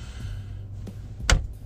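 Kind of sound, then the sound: household object, door opening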